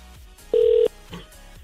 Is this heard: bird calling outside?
no